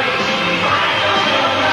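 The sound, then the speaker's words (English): A large crowd in Canada yells and roars continuously, a dense wall of overlapping shouts with no pauses, loud and steady throughout. “These people ain't Americans. What are they yelling about?”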